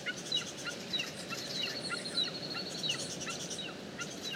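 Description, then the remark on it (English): A wedge-tailed eagle's thin, high cry repeats in short yelping notes over a steady wash of outdoor ambient noise, with no one speaking; three eagles circle slowly over a dam wall. “What a beautiful sound that is. It's like a cry.”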